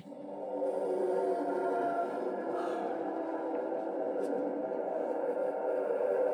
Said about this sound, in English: If it's going to be a Vulcan, it has to be the Vulcan Howl. Oh, well done. So I downloaded something that sounds a little bit like a Vulcan Howl. Good. That's like a blue whale, a little bit like Chewbacca.